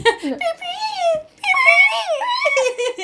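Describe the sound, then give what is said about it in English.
A voice imitates a panicked whistle with high, wavering whine-like tones: a falling glide, a brief pause, then a longer run of rising and dipping squeals, fairly loud and unaccompanied. “I like how we're doing impressions of a whistle.”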